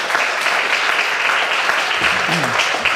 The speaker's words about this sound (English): And then another round of applause for everybody who's spoken so far. You guys have done a ton for us and yourselves as well. So go ahead and give you guys a round.